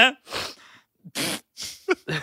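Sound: sniffling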